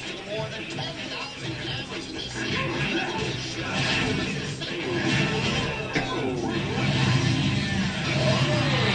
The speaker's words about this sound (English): Oh, it does use the chainsaw noise comes out of the Wiimote.